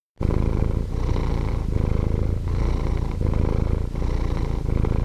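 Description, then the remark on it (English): A relaxed domestic cat purring steadily, a continuous low rumble that swells and dips with each breath, about once a second, with no voices. “Let's see if you and our listeners can tell which is the morning purr and which is the relaxed purr.”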